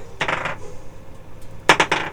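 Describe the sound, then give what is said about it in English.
Dice clatter across a hard tabletop in two short bursts, each a quick cluster of sharp clicks and rattles, fairly loud with no voices, rolled for a luck check. “That's a fucking 19. Okay. I think dice are hot.”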